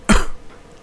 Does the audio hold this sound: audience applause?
no